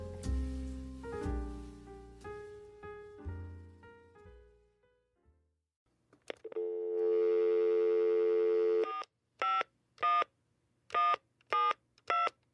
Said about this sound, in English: Ring ring peepee phone! Ring ring peepee phone!